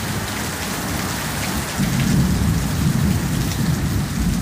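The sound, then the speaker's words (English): Steady, heavy rain sweeps over Cape Town at night and hisses throughout, and partway in a deep roll of thunder swells up and keeps rumbling low beneath the downpour until the end. No voices are heard. “And a bit of thunder.”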